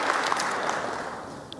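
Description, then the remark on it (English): An audience claps steadily for a second and a half to give the Lord a hand, a dense, even patter of many hands with faint scattered cheers mixed in, holding at a moderate level throughout. “Can we just give the Lord a hand? Could you just do a cheer?”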